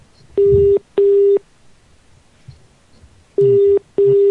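Telephone keypad dialing tones: four loud, identical electronic beeps in two pairs separated by a short pause, each tone steady and clear, with no talking.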